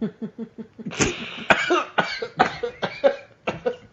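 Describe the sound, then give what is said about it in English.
A coughing fit: a run of quick, small hacks builds into a string of loud, harsh, rasping coughs, roughly one every half second, with no talking in between. “Don't choke”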